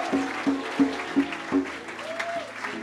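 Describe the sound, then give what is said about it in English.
An audience claps together in a steady, rhythmic beat, about three claps per second, with a faint rising shout of praise to the Lord near the end over a warm musical backdrop. “Clap your hands and give the Lord a shout of praise.”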